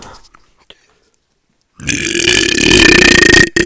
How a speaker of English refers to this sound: Sorry, I just had a burp.